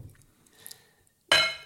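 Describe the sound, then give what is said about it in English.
A single sharp, loud clink of a delicate china plate, ringing briefly before fading, after a second or so of faint, quiet rustling. “Oh, mind the plate. Don't damage the delicate china.”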